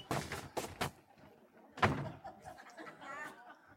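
An inflatable stand-up punching toy is struck with three quick dull thumps, then one louder whack, followed by soft rubbery squeaks and rustling as it rocks back upright.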